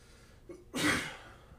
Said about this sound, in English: And then I started coughing, like, 20 minutes ago. So something's in your house is trying to destroy both of us.